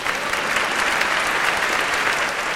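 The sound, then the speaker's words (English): An evening audience claps steadily to show they feel dread about climate change, a dense and sustained wash of applause that stays loud and even throughout with no voices rising above it. “Applaud if you feel dread.”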